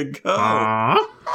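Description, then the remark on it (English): A person vocalizes a single drawn-out, nasal honk in imitation of a Canada goose. The call is loud, lasts under a second, and bends upward in pitch at the end. “So give me your Canada goose imitation.”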